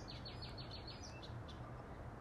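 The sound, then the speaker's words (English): Birds chirp in a quick series of short, repeated calls, faint, over a steady low hum of background noise, with a few scattered chirps trailing off afterward. “I know you hear the birds.”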